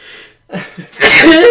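A loud sneeze: two short catching breaths build up, then a sharp explosive burst that trails off with a voiced, squeaky tail.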